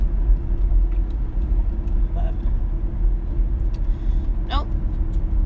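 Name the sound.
car driving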